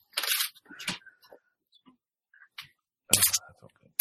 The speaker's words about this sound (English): Did you fart? No, I was cracking my knuckles.